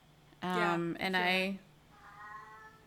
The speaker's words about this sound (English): Cat wants to know what's going on. He's forgot what we're doing as well.